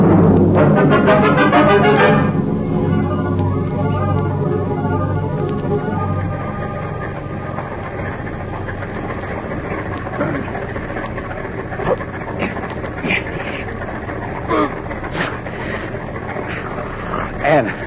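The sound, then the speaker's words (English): A car engine turns over and roars loudly for a few seconds, then settles into a steady, lower idling rumble that continues throughout, inside a closed garage, with faint scattered knocks and movement on top. “You just lock him in this closed garage to breathe the gas. Tonight, when it's dark, we get rid of their bodies and their car. Start the motor.”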